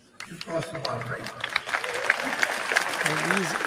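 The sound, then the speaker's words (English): A crowd bursts into steady applause and loud cheering as a speaker's microphone is cut off, with dense clapping throughout and raised voices shouting and whooping over it, building quickly after a brief quiet start. “Other peasants, I imagine, are cheering for him to be censored because he mentioned Jeffrey Epstein, which is all true, but you shall not say that.”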